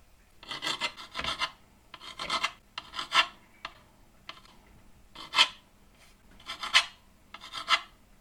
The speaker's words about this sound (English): So, we've just got some fresh bread. So, I'm going to cut the fresh bread into cubes to be able to fry them off.